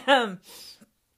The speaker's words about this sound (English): Please excuse. Let me clear my throat.